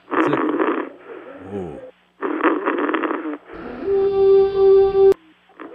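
Rasping snores come in a steady rhythm through a thin, phone-like line, several rough breaths in a row, followed by a sustained droning tone that cuts off abruptly.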